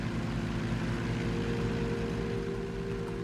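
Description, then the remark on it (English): A steady, loud mechanical engine drone with a deep rumbling hum from a combine harvester collecting wheat in a field, continuous throughout with no talking. “This is a combine harvester collecting wheat in a field.”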